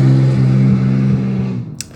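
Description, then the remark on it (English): A car engine revs outside a motel at street level with a loud, low, humming drone that holds a fairly steady pitch, then eases off and fades, ending with a brief sharp click. “Apparently some people like to rev their engines outside of our motel because let it be known that we were sitting basically at street level, and so every now and then you will hear a car”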